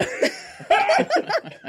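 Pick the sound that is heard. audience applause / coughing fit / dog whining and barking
coughing fit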